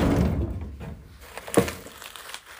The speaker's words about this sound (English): I can't remember what color this one is. Let me look in the drawer real quick.